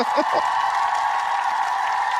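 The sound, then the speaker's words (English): A canned crowd booing effect, played from a soundboard by hitting the wrong button instead of applause, plays loud and steady for about two seconds, a dense wall of many voices, with a brief bit of a voice right at the start. “Meant to hit applause, not boo.”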